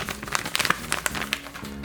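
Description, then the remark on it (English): Paper rustles and crinkles in a quick, irregular series of soft, crisp bursts, with no one speaking. “Let me get my paper.”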